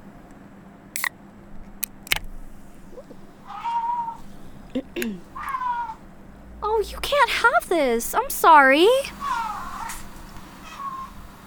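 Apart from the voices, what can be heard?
cat meowing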